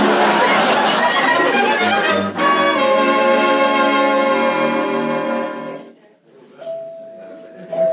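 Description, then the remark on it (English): A dense murmur of many overlapping voices from a crowd at a busy market during a sale, then a loud ringing chime with sustained tones that fade out, followed by a steady high tone over quieter background noise. “It's quite a crowd here today, isn't there?”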